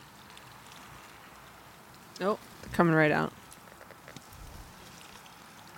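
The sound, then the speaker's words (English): A steady, soft splashing wash of mustard powder mixed with water, poured from a jug onto the soil of a vegetable bed with the mulch moved aside, runs throughout, fairly quiet, while a voice briefly speaks over it partway through. “Shake up our mustard powder one more time and give it a pour.”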